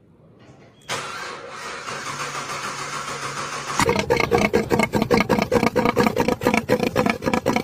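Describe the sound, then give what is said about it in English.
A car engine cranks and catches with a loud burst, runs with a steady roar for a few seconds, then settles into a rough, rhythmic, pulsing rumble. No one speaks. “That Corvette probably wishes it sounded that good.”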